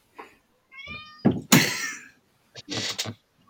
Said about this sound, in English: My cat is fucking... She's yowling again. Can you please decide if you want to be in here?